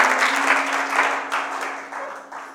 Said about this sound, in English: Why don't you clap for Jesus? Clap for Jesus as you take your seats.